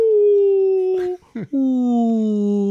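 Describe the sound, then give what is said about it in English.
A voice imitates a rumbling stomach with a groaning, whale-like sound: two long, low, droning moans that slowly slide downward in pitch, broken by a brief gurgling catch in the middle, loud. “It was like a blue whale was on my stomach.”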